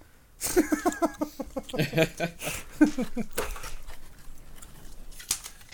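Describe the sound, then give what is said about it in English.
Wet, crunchy chewing noises come in irregular bursts, the first half mixed with voices and laughter, then a few softer crinkly bites continue on their own. “Who's chewing?”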